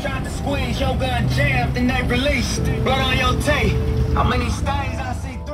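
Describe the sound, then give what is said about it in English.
Rap music blares loudly from a motorcycle passing by at a busy intersection, a rapping voice riding over the low rumble of the engine, staying steady for several seconds. “On this day, it's blasting from a motorcycle passing by.”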